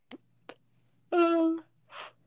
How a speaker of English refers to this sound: Sorry, I'm yawning.